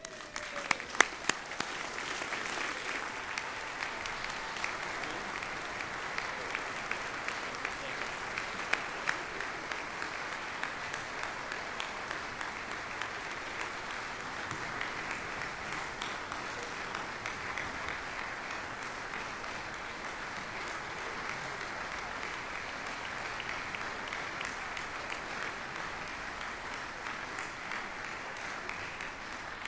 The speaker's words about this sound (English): Will the faculty please stand, join me in a round of applause for our graduates, and remain standing.